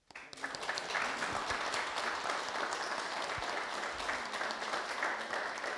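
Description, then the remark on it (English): A crowd in the village of Clooney breaks into sustained applause for the local community group that got traffic slowed, many hands clapping in a dense, steady wash that starts abruptly and holds at an even, fairly loud level for several seconds. “And I'd like a big round of applause for the local community group that has achieved that.”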